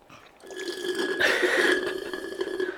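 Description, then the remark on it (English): A drawn-out slurping sip of a drink, lasting a couple of seconds, with a wet, whistly tone that swells in the middle and then trails off. No one speaks. “Ironic sip.”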